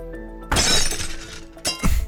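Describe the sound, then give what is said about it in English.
A window is punched and shatters with a sudden loud crash, then glass shards tinkle and scatter for about a second before a second burst of breaking glass. “All right, I'm gonna punch this fucking window.”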